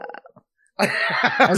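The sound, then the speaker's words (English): A loud, drawn-out belch rumbles for nearly a second, preceded by a few brief, soft sounds and a short pause. “All right, are we belching now?”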